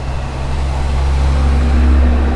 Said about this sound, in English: There's a trash truck coming by right now. It's crazy. It's so loud.